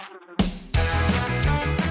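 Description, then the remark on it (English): A bee buzzes loudly inside a studio, a steady droning hum that starts abruptly and swells slightly as it continues, with no one speaking. “There's a bee in the studio!”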